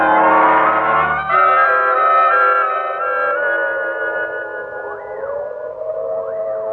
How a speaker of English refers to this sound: Grandma, do you hear? Yes. Yes, the prison siren. There's been another escape.